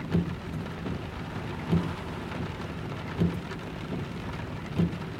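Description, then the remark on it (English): Steady rain hisses and patters continuously as a big storm approaches, with low, muffled rumbles of thunder rolling in roughly every second and a half. No voices. “Sounds like a big storm coming tonight.”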